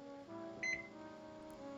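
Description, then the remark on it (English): A kitchen timer set for 6 minutes of steaming goes off with a short, high-pitched electronic beep, two quick pulses, standing out clearly over a steady low background hum, signalling to turn off the heat. “Okay, just to clarify what you heard there, 6 minute timer goes off, turn off your heat.”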